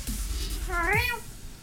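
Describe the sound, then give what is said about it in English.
A single clear cat meow rising and falling in pitch, lasting under a second, over a faint steady background hum with no talking. “We have three cats.”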